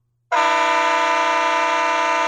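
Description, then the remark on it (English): A loud blast from a Nathan Air Chime KSLA train horn starts abruptly and holds steady for about two seconds, a rich multi-tone chord with bright harmonics and no pause or change in pitch. “Then we have the Nathan Air Chime KSLA. I don't know that I like that one.”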